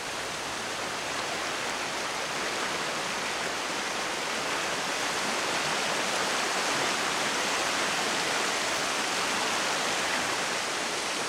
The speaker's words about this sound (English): Up here on the moors, it rains for 200 days of the year, and that's 2 metres of total rainfall. So it's water like this in streams and rivers that's responsible for moving all these grains from their source up in the granite, downstream to the beach.